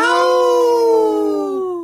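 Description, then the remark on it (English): A single long wolf howl holds a steady, slightly falling tone for nearly two seconds, loud and clear, with rich harmonic overtones and no voices. “Let's live and let howl.”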